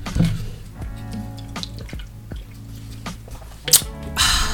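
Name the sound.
sipping water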